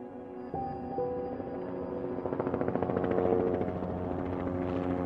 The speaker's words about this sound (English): Mayo 1 can be in flight within minutes of dispatch, 24 hours a day, every day of the week. Mayo Clinic medical helicopters like Mayo 1 fly nearly 2,000 flights a year.